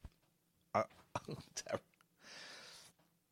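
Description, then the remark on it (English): Several short, throaty burps in quick succession, fairly loud, followed by a soft breathy exhale; no one talks. “Let me just get rid of these burps.”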